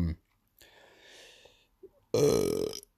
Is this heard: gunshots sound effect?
no